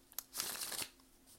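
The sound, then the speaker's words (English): A deck of tarot cards is shuffled during a tarot reading: a short, papery riffle lasting about half a second, preceded by a faint tap, with no voices. “I am shuffling my Terra Mucha, my tried and true.”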